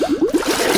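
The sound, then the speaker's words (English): A hand sloshes through floodwater while someone looks for the main water shutoff valve, making a quick run of rhythmic swishes and gurgles, about six strokes in under a second, with no talking. “I'm going to get my hand above water.”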